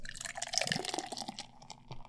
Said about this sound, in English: Was terribly done. I do not know how to properly pour beer. Yeah, you pour it down the side.